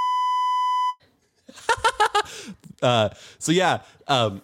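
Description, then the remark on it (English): A loud, steady censor bleep tone holds for about a second, then cuts off. After a brief pause, a high, animated voice follows in several loud bursts. “I'm about to bleep you.”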